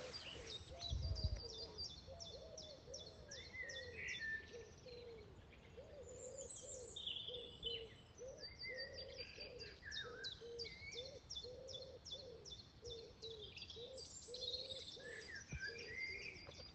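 Outdoor bird song from Norfolk fills the air: a dense chorus of chirps and trills from several birds, with a soft repeated cooing underneath, steady, no one speaking.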